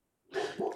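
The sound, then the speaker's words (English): A dog gives a quick pair of barks after a brief silence, two harsh, raspy bursts running close together, with no voices alongside. “Hold on, my dog's barking.”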